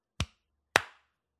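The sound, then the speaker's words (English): Two sharp hand claps about half a second apart, crisp and loud against silence. The second rings out slightly longer; a sync clap made at the start of a recording session. “Go for the clap in right. 3, 2, 1.”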